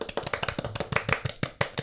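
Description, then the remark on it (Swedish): A short burst of hand-clapping applause, rapid and fairly even, with crisp overlapping claps from what sounds like one or a few people, without any talking. “En applåd till alla pole parents där ute.”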